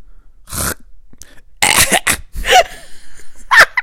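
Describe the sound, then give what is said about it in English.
A person reenacts a video of an old dog lying on a pillow with a cough, imitating its hacking cough: several raspy, throaty bursts with brief pauses between, fairly loud, ending in a harsh gagging scrape. “I'm an older dog. I'm laying on a pillow. I've got a little bit of a cough.”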